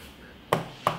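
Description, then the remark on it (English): A phone rings with two short, bright electronic pings about a third of a second apart, fairly loud, over a quiet background with no one talking. “phone is ringing, excuse me, pardon me.”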